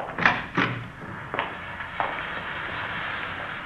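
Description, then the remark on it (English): A side door opens and closes, giving a couple of quick wooden thumps followed by two softer knocks, all over a steady background hiss with no voices. “You can go out the side door, then.”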